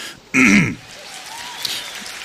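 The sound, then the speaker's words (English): A sudden, loud, accidental burst of clapping lasting under half a second, standing alone against a quiet background hiss before fading out. “Whoops, incidental clapping.”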